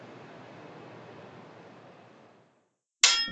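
A steady rushing noise fades to silence, then a single loud, bright metallic clang rings out as swords strike together, with a ringing high-pitched tail.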